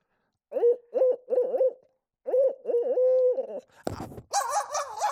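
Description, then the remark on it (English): A person imitates an owl's hooting by mouth, a series of tonal hoots in two rhythmic bursts, followed by a harsher, raspier mouth-made crow caw, used as a turkey call, near the end. “Or owl and a crow.”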